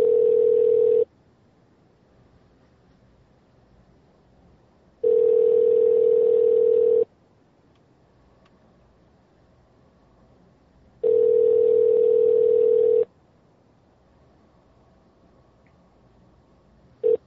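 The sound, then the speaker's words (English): A telephone ringback tone repeats in long, steady bursts of about two seconds, separated by roughly four seconds of near-silence, clear with no talking. “Get to your phone, person.”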